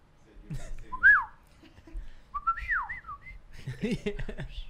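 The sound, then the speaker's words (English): A person whistles an imitation of the droid Arturito's beeps: quick rising and falling chirps and warbling slides, bright and fairly loud, in two short bursts, followed by a few low murmuring voices. “Do-do-do. Arturito. Arturito.”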